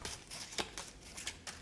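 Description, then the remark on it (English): Broken playing cards being shuffled, heard as a quiet series of soft, papery flicks and riffles in uneven bursts, with no one talking. “You know, I'm just trying to shuffle all these broken cards. I don't know if you can hear me, if you can hear them being shuffled.”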